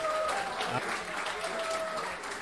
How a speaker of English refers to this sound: Hold for applause.